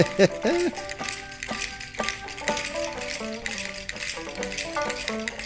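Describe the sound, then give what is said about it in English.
Rapid, rhythmic clacking of cow rib bones played as percussion, sharp dry clicks in quick bursts over a steady tonal musical background. “Yeah, you got to get some cow rib bones.”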